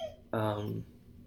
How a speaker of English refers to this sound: Yeah, so dog just started whining, so I knew that might happen. That's all right. The risks you take, you know. But no, I thought it was the chair squeaking. But anyway. Alright, I'm gonna go let him out.